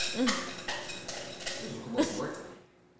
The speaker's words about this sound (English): Yeah, and this nigga chopping up ice on it. I just said that. Yeah, we can hear that.